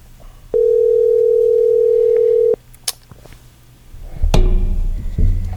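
A loud, steady telephone dial tone hums for about two seconds, then cuts off, followed by a few sharp clicks and muffled handling noise like a receiver being picked up, as someone is called on the phone.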